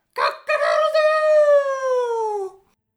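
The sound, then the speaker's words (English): A person's voice imitates a rooster crowing in one long, loud call with a choppy start, then a sustained, slowly falling note that fades out after about two seconds. “I just crow like a rooster.”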